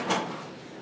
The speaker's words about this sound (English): Do you want to close these doors?